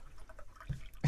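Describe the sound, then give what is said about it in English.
Scattered droplets of water drip and plink at irregular intervals as a rain sound effect, fairly quiet, ending with a brief louder splash. “We've got some rain effects coming. Water sounds are lovely.”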